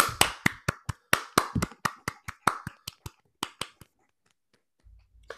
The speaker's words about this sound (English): So happy birthday, Attack of the Clones. Let's all give a clap for Attack of the Clones.